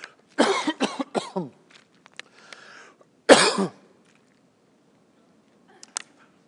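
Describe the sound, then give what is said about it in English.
A loud burst of coughing: three quick harsh coughs, a pause with some throat noise, then one strong final cough, followed by quiet and a faint click near the end. “Hold on, let me cough here.”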